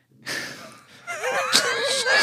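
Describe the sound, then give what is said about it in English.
A loud, drawn-out burp right at the microphone, starting with a breathy rush and turning into a croaking, gurgling rasp that lasts about two seconds, with no talking over it. “Oh, it was a burp that jumped out.”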